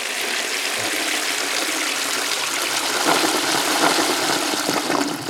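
A toilet flushes with a steady, fairly loud rush of swirling water that lasts about five seconds, surging slightly toward the end before cutting off; no one speaks.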